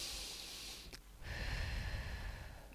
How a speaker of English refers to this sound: To calm ourselves, let's breathe.